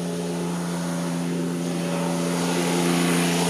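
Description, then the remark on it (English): A steady, droning tractor engine hums with a low, buzzy pitch and a layer of rough noise on top, growing slightly louder toward the end. No one speaks. “And you hear some annoying ass dude with like a tractor or some shit in the background.”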